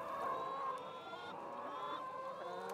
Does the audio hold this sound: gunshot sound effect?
no